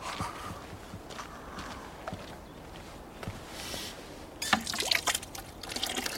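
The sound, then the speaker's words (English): Water trickles and drips, then splashes louder as it is poured into a container to be warmed up at 4:15 in the morning, with small clinks and a steady liquid rush toward the end, with no talking. “time to get the water and start warming it up.”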